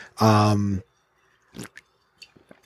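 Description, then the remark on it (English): A short voiced sound from someone, then quiet wet sips and gulps of water as a person drinks because their throat is getting dry, a few soft slurps and swallows spaced out over a couple of seconds. “Need a little water. Throat's getting a little dry.”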